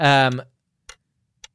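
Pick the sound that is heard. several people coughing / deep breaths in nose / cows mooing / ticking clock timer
ticking clock timer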